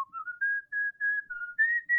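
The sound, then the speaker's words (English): A man looking skyward whistles a short, wandering tune of several sustained pure notes, clear, with brief breaths between phrases and no talking. “Bucky looked skyward and whistled.”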